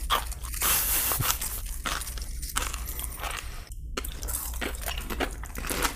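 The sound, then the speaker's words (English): Loud crunching of a Simply Naked tortilla chip being chewed, with repeated sharp crackling bites and steady mastication noise over about six seconds, no talking. “I'm going to jump in with the Simply Naked chip.”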